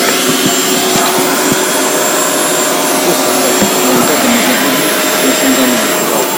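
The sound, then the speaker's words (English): A vacuum cleaner runs steadily and loudly with a dense, constant whine and roar, with faint bits of a voice audible in the background. “Yeah, so you're gonna hear a vacuum for like a minute or something, and then yeah, it will be fine.”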